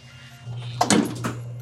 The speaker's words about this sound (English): So the door is now shut, and so now the sensors are calibrated.